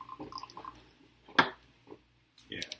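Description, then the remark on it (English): Beer being poured, heard as short splashy gurgles and drips with a sharp fizzy burst in the middle, while faint voices murmur in the background. “Well, maybe you're just pouring beer.”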